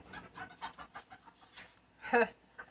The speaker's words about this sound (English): Get the dog getting protective over the food bowl. Anyway. The chickens like to kind of wander through and pick up a snack from the dog bowl.